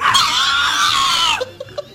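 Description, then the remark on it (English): A pig squeals loudly in one long, shrill, piercing cry lasting over a second, then trails off into a few short, fainter grunts and squeaks. “That's hey, quit sodomizing that pig over there, huh?”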